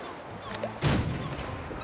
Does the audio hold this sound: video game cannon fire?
yes